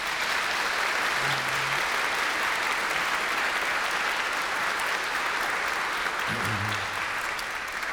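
An audience applauds steadily, a dense wash of clapping hands at an even loudness throughout, with a faint low tone or murmur briefly audible underneath.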